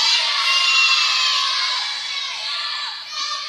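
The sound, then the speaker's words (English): An audience shouts their own names all at once on a count of three, a loud overlapping roar of many voices that stays strong for a few seconds before easing off slightly. “Everybody, I want you to yell your name, okay, at the count of three, because I want to get to know you.”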